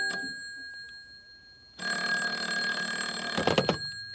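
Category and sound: signal or alarm, telephone ringing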